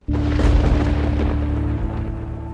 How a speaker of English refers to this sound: Here comes the thunder sound.